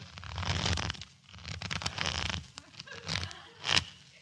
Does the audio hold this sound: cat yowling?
no